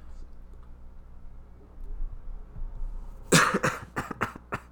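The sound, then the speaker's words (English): After a few seconds of low room noise, a person breaks into a burst of harsh, rapid, loud coughs, about five or six in a row. “Bro, can you please talk in the mic when I'm coughing so people don't think it's just like a dead space?”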